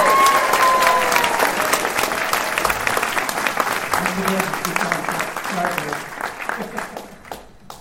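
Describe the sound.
A crowd breaks into loud, sustained applause, dense clapping with some cheering and voices mixed in, gradually thinning out and fading toward the end.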